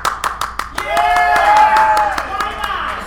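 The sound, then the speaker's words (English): An audience breaks into a round of applause for a speaker's Aquaman shirt, showing they think this is what Aquaman should be. Sharp claps ring out steadily for a few seconds while voices cheer and whoop over them. “And if you think this is what Aquaman should be, go ahead and give a round of applause.”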